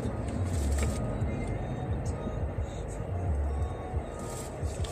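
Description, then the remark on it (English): A truck pulling a trailer roars by loud and fast, its deep engine rumble and road noise holding steady throughout, with faint muffled voices underneath. “That fucking truck with the trailer.”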